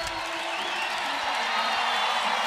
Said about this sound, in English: And you can hear that crowd, too, getting into this.